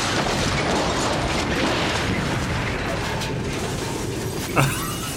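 A big explosion roars steadily through the whole stretch, a loud, dense rumbling blast with no letup, punctuated by a brief sharp crack near the end.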